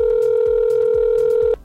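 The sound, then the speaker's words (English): A steady, loud telephone dial tone hums for about a second and a half as a host at KRKO Radio in Everett places a phone call, then cuts off abruptly, with soft low thumps pulsing underneath. “I gotta make a phone call.”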